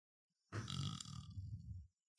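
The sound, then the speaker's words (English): A single long, loud burp caused by indigestion, rumbling low and sustained for over a second before cutting off, with no talking over it. “How did you burp?”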